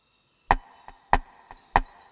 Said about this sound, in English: Night had fallen. I heard the tok-tok sound of the wooden gong the Muslims used to call their flock for the final prayer of the day. So it was around 8 o'clock.